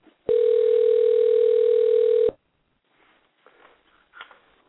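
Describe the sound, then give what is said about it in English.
A single loud, steady telephone ring tone lasts about two seconds with a thin, line-filtered quality, then cuts off abruptly, leaving faint muffled background sounds. “Can you hear that the phone ringing? I'm hearing ringing.”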